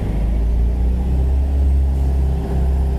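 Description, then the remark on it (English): A bus's engine rumbles deeply and steadily as it pulls away from in front of a restaurant, loud and low-pitched throughout, with no voices. “And there's also what looks like a bus just blocking the front there. We'll see if it moves.”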